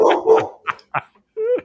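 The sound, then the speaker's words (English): A dog barks in a quick series of short, sharp yaps, ending with a higher, drawn-out whining yelp. No one is talking. “The dog liked that.”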